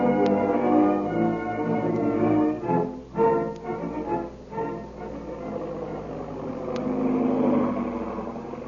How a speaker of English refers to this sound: At that very moment, the big black seaplane is heard over the mysterious plantation house, circling for a landing.